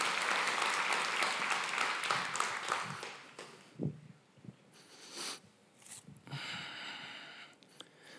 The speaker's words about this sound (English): Give our tech team just a little bit of a clap. We appreciate them so much.